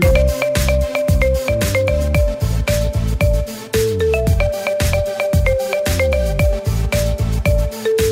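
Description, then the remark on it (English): A pop song plays as a phone ringtone during a ringtone guessing game, loud and continuous, with a punchy steady beat, thumping bass and a bright repeating synth melody. No one speaks over it. “This is a song. Ringtone IQ, Sudden Death.”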